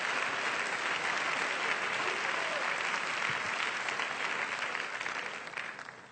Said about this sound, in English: Come on and clap those hands to the Lord like you really believe what I'm saying this morning.